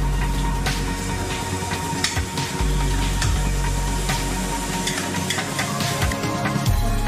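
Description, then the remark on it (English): Raw chicken, cooked plainly without flour or batter as a healthy option, sizzles steadily in a frying pan, a dense crackling hiss with scattered sharp pops and the occasional scrape of stirring, fairly loud throughout with no voices. “So just add your chicken to the pan.”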